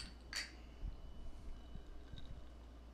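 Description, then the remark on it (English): A single bright clink of glasses of bourbon and sweet tea touching in a toast, short and ringing, followed by quiet low thumps and background noise with no talking. “Cheers before we get started with anything.”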